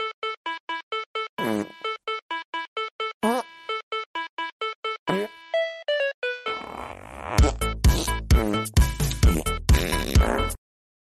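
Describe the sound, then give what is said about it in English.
A novelty fart song plays from Amazon Music through an Alexa smart speaker: a quick run of evenly spaced electronic notes, then a louder, denser stretch of rhythmic raspy fart noises over a thumping beat. “Here's the fart song by … on Amazon Music.”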